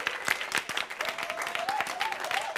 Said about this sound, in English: Oh, give her a clap, because y'all don't know. Y'all don't know what she does.